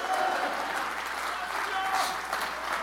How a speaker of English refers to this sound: If you believe that, clap your hands and shout hallelujah.